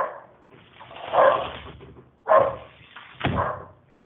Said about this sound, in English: Let me close the window so we don't hear the dog.